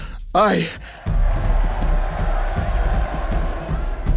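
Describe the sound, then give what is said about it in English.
A short breathy vocal swoop, like a gasp, is followed by a loud crowd cheering and roaring at a celebration in a courtyard welcoming someone home. The dense, steady din holds for about three seconds with no clear individual voices. “Shango rushed to the window at the sound of cheering.”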